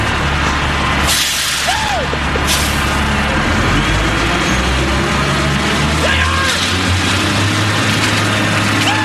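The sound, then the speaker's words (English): A cement truck engine rumbles loudly and steadily as it pours cement into a Corvette car, with a thick churning, grinding wash of noise layered over its deep idle throughout. “That's what he filled his boss's car with cement because he was mad at him.”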